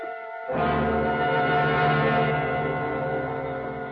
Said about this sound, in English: First I heard it. The humming of swarming bees. Then I saw the overturned beehive.